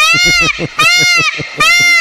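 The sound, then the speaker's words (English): A goat bleats loudly and repeatedly, three long wavering cries in quick succession, each with a shaky, trembling vibrato, filling the whole two seconds. “It is a beautiful sound. It's time for our Goats of the Week.”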